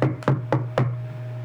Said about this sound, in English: And then there's like a knock at the door.